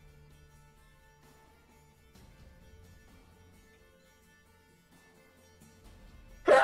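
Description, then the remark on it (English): A single loud, abrupt sneeze bursts out right at the end, after several seconds of quiet hum with no talking. “Bless you. Bless you.”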